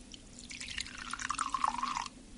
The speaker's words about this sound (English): All right, well, I've got some vinegar here. So if I take some of this and pour it into the glass with the bubble bath mixture...